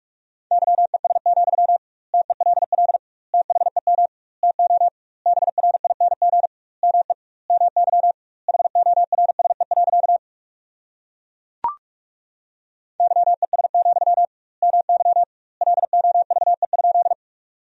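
Morse code practice tones at 45 words per minute with double word spacing, sending sentences built from the top 500 words: a steady mid-pitched beep keyed on and off in rapid bursts, grouped into words with short pauses between, broken once by a sharp click and a brief silence.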